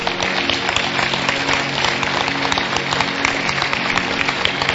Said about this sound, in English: Somebody should have been clapping by now.